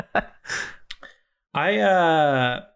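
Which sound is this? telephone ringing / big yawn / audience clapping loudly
big yawn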